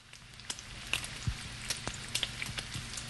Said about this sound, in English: Sizzling.